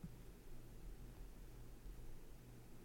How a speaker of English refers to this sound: Oh, a train is passing by.